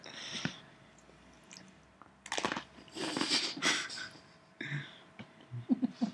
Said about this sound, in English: Just chew with your mouth open so I can see how it goes the whole way through. She has not opened her mouth. She put her hand in front of her mouth but kept it closed. She thinks she's chewing with her mouth open